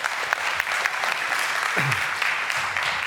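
An audience gives a round of applause for a woman after her testimony, clapping steadily and loudly in a dense wash of overlapping handclaps lasting several seconds with no pauses and no one speaking over it.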